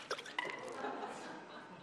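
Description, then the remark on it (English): Water splashes out of a lidded jar being shaken: two quick sharp sloshes, then a steady wet spattering and dribbling, fairly quiet. “I'm going to shake this jar.”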